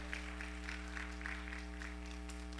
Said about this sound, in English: Come on, give it a clap offering tonight. Amen.